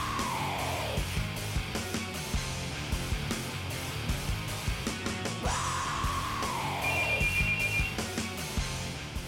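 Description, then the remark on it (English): A phone rings with an incoming call from a father, its electronic ringtone repeating in bursts over a dense, busy musical background. The ringing is fairly loud, with no talking. “And another phone call.”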